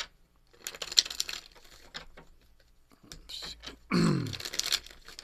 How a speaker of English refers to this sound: At least you know he's shuffling the deck. Yeah, I hear it. I hear it.